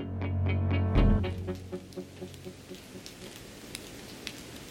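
Steady cold rain hisses across the whole clip on a Sunday night in Seattle, with regular drips tapping. A low, droning swell sounds at the start and fades within the first second.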